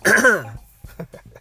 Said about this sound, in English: You know, I don't think that, I gotta clear my throat.